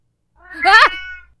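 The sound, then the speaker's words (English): A single drawn-out yowl from an angry cat, loud, rising then sliding down in a strained, whining tone before trailing off, with nothing else around it. “Does it usually make that noise? I mean, it's not even growling, and I've never heard a cat not whispering in the unholy language of the dead.”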